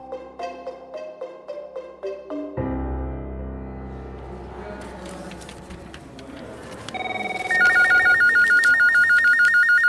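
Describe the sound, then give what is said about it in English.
After a stretch of music, Representative Dale Cribb's office telephone starts ringing near the end, a loud electronic trill of rapid warbling pulses repeating steadily over the fading background. “Just weeks into the pandemic, Representative Dale Cribb's phone began to ring.”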